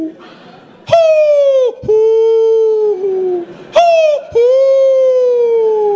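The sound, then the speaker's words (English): A man's voice imitates owl hoots to call to a wild owl by a lake: two pairs of long, drawn-out, falling "whoo" calls, loud, each note held for a second or more, with no other talking. “We're talking to an owl.”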